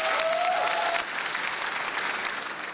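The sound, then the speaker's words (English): A crowd claps steadily for a few seconds, a dense, even patter of applause with a faint high tone at the start before the clapping softens slightly. “Audience, big round of applause.”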